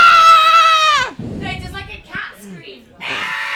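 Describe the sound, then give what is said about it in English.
A person lets out a loud, high, wavering scream for about a second, doing the voice of the alien E.T., then follows with a string of odd, gurgling vocal noises. “runs screaming out of the room.”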